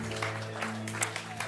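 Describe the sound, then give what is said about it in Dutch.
An audience applauds the band, a dense, steady patter of many clapping hands over a constant low electrical hum, fairly subdued throughout with no clear voices. “Let's give the band a hand.”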